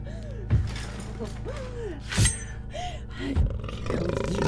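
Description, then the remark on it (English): A mountain lion, bigger than any seen in the area, lets out three loud, rough roaring snarls about a second apart from the other side of a door, aggressive, with thin whining tones in between and no talking. “On the other side of the door is a mountain lion.”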